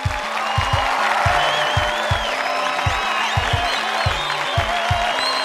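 An audience applauds a trivia game contestant who scored 8 out of 10, a steady, dense crackle of clapping with some whistles and cheers, over a rhythmic thumping bass line that keeps pulsing underneath.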